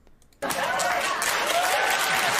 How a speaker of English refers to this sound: Applause, son!